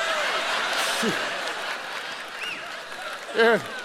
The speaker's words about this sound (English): And now you laugh and clap and all that kind of stuff